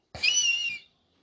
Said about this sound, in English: How is that an eagle, bruh?